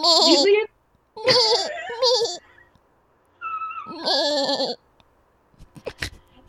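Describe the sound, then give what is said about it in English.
A human voice imitates a baby lamb's bleat in three wavering, quivering cries, loud, separated by short pauses, made by closing the throat and letting the tongue get fat, followed by a few faint clicks and rustles. “You sound like a baby lamb.”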